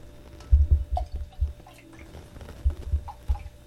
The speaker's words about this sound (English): Here, hold your drink to mine. I need to give you some more.